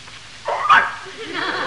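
A dog gives one short, fairly loud bark in greeting as its owner comes in, followed by a softer, drawn-out whining note as it settles.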